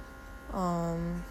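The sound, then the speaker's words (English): A steady electric motor hum from compression recovery boots, like a small air pump, starts with a slight downward slide in pitch, holds evenly for under a second, then cuts off. It is moderately loud, with no talking. “I'm sitting with my, that humming you hear, that's my recovery boots.”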